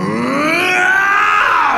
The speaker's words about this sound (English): you feel it suddenly release Morgu from deep inside you, who emerges with a scream, a deep, dark, horrible scream